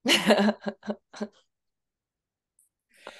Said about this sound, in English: Hold on, I feel a sneeze coming on.